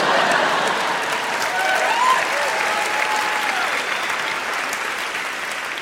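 Sustained applause from a sizable crowd, a dense steady wash of clapping at fairly even loudness for several seconds, with faint voices and cheers mixed in.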